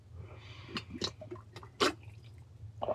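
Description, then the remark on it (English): Someone takes a sip of water, with a few soft wet mouth clicks and a gulp scattered over a quiet background hum, and no talking. “So, hold on, let me get a little water real quick.”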